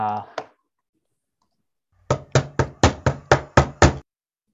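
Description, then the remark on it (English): A short vocal sound at the start, then after a pause eight loud, rapid knocks on a door in a steady, even rhythm. “Okay, so hit the door.”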